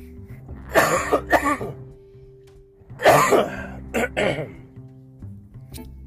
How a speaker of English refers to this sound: Uh-oh. I feel a cough attack coming. Hold on.